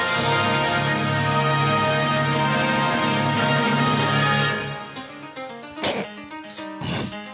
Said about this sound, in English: Bless you. I sneezed.